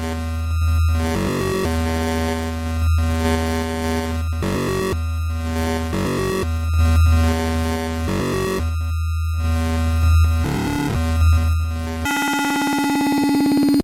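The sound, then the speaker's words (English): Loud, buzzy retro video game tones and music pulse in rhythmic bursts with no talking, ending in a sustained electronic tone that rises and fades. “The sound and the music in this game brings me back to the days of the arcade.”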